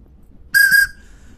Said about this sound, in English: And sorry, I didn't have my Joey whistle with me, but this whistle's good enough. This is the more of the Big Thunder Mountain whistle, so it's still a train.